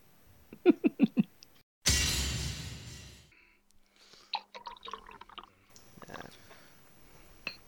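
Kirin Ichiban beer is poured into a glass in a loud gush lasting about a second and a half, after a few sharp clicks, then soft fizzing and crackling as the foam settles.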